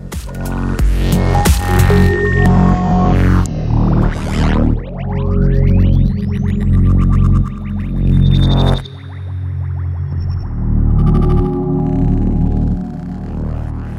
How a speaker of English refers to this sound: The reverb has been cranked up a little bit. I wrote down sounds of the night, sort of like the bird atmospheres from the beginning, but we've not just come out at the end the same way we were at the beginning. Something has been transformed.